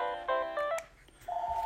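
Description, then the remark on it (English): A home telephone rings with a quick burst of bright, buzzy electronic tones, a brief pause, then a steady held tone. It sounds clear, with no voices. “And so this is why I don't like a phone in my house, because it interrupts.”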